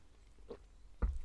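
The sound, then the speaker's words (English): A quick slurp from a cup of coffee: a short soft sip, then a louder wet gulping slurp a moment later, with no talking. “So, let's do the quiz. And I'll have a slurp of my coffee.”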